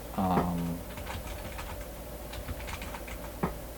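Quick, light keyboard clatter, a steady run of soft clicks close by, with a brief harmonic squeak or hum near the start and low room noise underneath.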